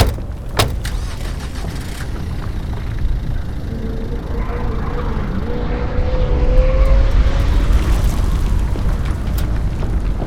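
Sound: car driving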